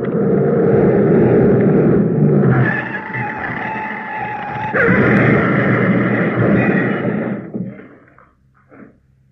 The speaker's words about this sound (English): Drove right through the hedge, he did, Sullivan. Went through it like butter, down the bank and into the burn.